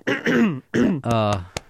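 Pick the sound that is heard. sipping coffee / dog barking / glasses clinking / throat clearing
throat clearing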